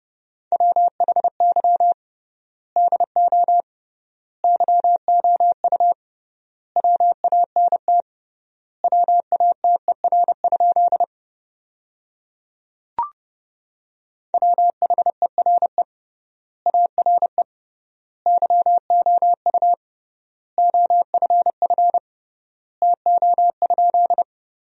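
Morse code at 30 words per minute with triple word spacing, sending sentences built from the top 200 words, in a steady, mid-pitched beep, rapid dits and dahs forming words separated by generous pauses, with a brief click partway through. No one speaks.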